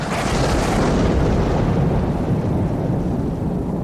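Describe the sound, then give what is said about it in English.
A loud, booming thunderclap-like blast from a massive ball of lightning in the distance, fired like a cannonball towards a ship in a storm, erupts and rolls on as a heavy, sustained rumble, its crackling upper edge fading while the deep roar continues with no voices. “You see a massive ball of lightning off in the distance behind where Skunder is looking begin to charge up, almost this cannonball that fires towards the ship.”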